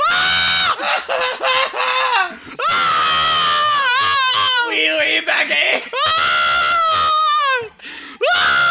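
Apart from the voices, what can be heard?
people screaming in panic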